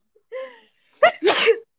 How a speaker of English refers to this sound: Bless you. Oh, my goodness, you guys. I'm so sorry, but I was holding that in for so long.